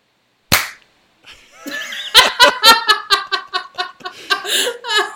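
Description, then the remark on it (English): A group claps together once, timed to a shared synchronized clock at the moment the second hits 20, producing one sharp, loud smack, then after a short pause several people break into rhythmic, bubbling laughter that continues to the end. “Okay, let's all clap when the second hit 20.”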